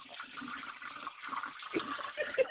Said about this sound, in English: I flushed it down the toilet. I can't do it enough.